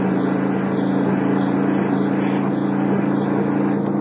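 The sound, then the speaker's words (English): A car engine drones loudly and continuously as the car speeds up on a road with very light traffic, a low humming rumble with a faint wavering whine above it; no voices are heard. “Speed up a little.”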